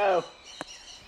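A parrot gives a short, loud squawk that drops in pitch, followed by faint, thin high whistling tones and a single sharp click.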